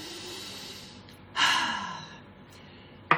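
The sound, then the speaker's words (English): A slow, airy breath gives way to a long, strong nasal sniff of peppermint essential oil, followed by a quick sharp sniff at the end, on a sunny Sunday morning in Bali. No one speaks. “So I'm going to take one more sniff of peppermint.”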